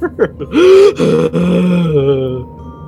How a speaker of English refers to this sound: I jump into the hallway onto my hands and knees and gasp for air.